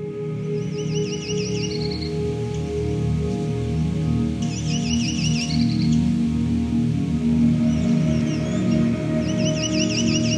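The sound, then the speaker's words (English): A Myrtle Warbler, a subspecies of the yellow-rumped warbler, sings about four short, bright trilled phrases separated by pauses, over a steady low rumbling background noise. “The Myrtle Warbler is an abundant, versatile warbler found in the northern woods of eastern North America.”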